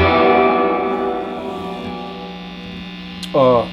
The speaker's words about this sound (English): I dig reverb, you know, and if you like a lot of reverb, we have a lot of reverb for you.